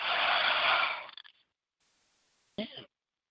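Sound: person yawning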